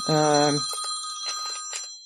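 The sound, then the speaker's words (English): A telephone rings with an incoming call, a steady, high electronic trill that runs throughout, joined by brief warbling bursts; a voice sounds briefly at the start over it. “Someone's calling you right now.”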